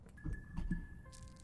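Three soft crunches of toast being bitten or chewed in quick succession, fairly quiet, with a faint steady electronic whine humming underneath and no talking.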